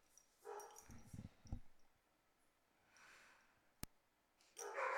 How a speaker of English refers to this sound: Dogs are going crazy in the house.